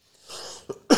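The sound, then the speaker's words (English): A harsh cough: a raspy breath leads into a short hack, then a louder, fuller cough right after, with no talking around it. “Or you're coughing a lot today.”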